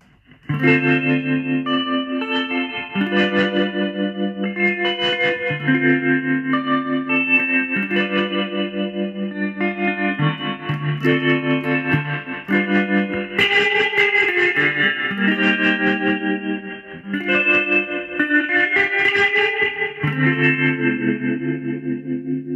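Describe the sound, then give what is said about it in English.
Electric guitar strums sustained chords that shimmer with a steady pulsing tremolo, washed in splashy spring reverb, playing continuously at a fairly loud, even level with no talking. “Okay, so I got a tremolo turned on.”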